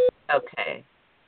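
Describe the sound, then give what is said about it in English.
A single short, loud electronic beep at a steady mid pitch sounds on a phone line, like a call-waiting tone, followed by a brief burst of muffled voice. “Because somebody else is beeping in.”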